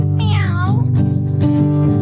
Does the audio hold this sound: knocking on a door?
no